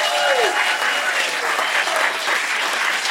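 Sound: large round of applause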